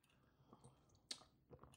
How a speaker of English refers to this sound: So take a sip, gentlemen. All right. And I'll tell you take what you're sip. Drinking. Cheers. It's kind of a blind taste test. Sip. Cheers.